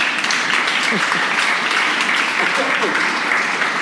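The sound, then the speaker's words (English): A crowd claps steadily and densely for a few seconds, a loud, continuous wash of applause with faint voices and murmurs mixed in. “You should applaud for that.”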